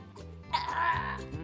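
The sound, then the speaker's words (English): A voice imitates a goat's bleat: a single wavering, nasal 'meh-eh-eh' lasting about a second, moderately loud, with a faint low hum running underneath. “Oh, a goat. They are experts at carrots because they eat them every day and they'll just go...”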